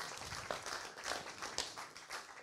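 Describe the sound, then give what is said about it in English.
A crowd of people applauding for the people who did the readings that morning, a dense, steady patter of many hands clapping at once, with no voices over it. “Can we just give a round of applause to all the people that read this morning?”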